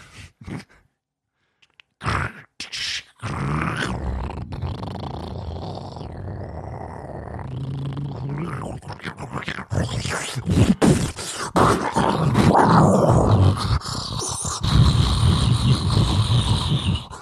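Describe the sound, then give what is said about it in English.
A voice imitates a car on the brink of blowing up, its engine malfunctioning and leaking oil: a long, gravelly growling and sputtering rumble that builds louder and rougher, ending in harsh bursts, after a few short breathy noises. “A car that is on the brink of blowing up and then it does.”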